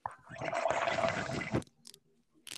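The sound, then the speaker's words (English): A loud, gurgling slurp of a drink lasts about a second and a half, then cuts off, followed by a few faint, brief sounds. “Are you slurping your drink?”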